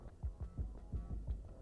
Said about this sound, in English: There's another humming of machinery from this facility echoes in this room.